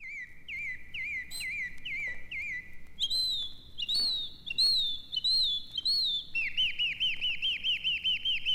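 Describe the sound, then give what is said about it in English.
Birds chirp and sing in bright, repeated whistled phrases, a steady rhythmic series of clear notes, with a faint low rumble of background noise underneath and no talking. “I do love the sound of those sweet birds in my ears.”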